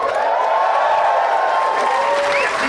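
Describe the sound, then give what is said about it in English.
A large audience at the Batman 75 panel at San Diego Comic-Con applauds and cheers continuously as the panelists walk up, dense clapping with rising whoops and a few high-pitched shouts cutting through near the end, loud and sustained throughout. “Yourselves out as you were cheering as people walked up, so you're gonna have to really set a new benchmark.”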